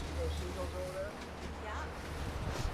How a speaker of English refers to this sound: I'm on a boat on the Pacific Ocean off the northern coast of Haida Gwaii's Graham Island near the Masset Reserve, one of two main Haida communities.